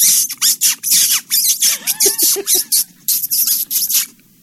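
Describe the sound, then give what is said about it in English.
A man imitates a rat squeaking in pain, a sound effect for Raiders: a loud, rapid run of shrill, high-pitched squeaks, roughly a dozen in quick succession, some with a brief wavering cry in the middle, and no talking. “That's not a squeak toy. That's a guy. That's a man making that sound.”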